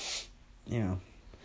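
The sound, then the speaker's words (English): A quick, breathy nasal sniffle, followed a moment later by a short voiced grunt-like sound from the same person, then quiet. “It's like why do I have this sniffle problem?”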